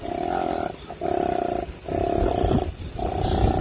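A koala, about the size of a 40-pound dog, bellows in four long, loud, deep snoring-like bursts, each with a steady buzzing drone and brief gasping gaps between them; no voices are heard.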